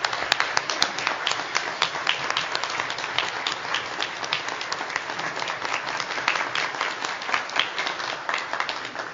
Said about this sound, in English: So If you would, just join me in giving her a round of applause for everything she's done for us.